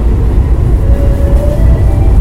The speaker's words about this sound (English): and here, oh, here's a C train.